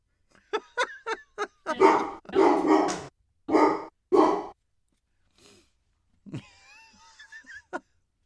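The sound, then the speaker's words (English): A dog barks repeatedly, a quick volley of sharp barks followed by several longer, heavier ones, then after a short pause a high, wavering whine trails off. “Sorry, barking. Shut that fucking dog up.”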